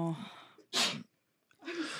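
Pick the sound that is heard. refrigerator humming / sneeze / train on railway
sneeze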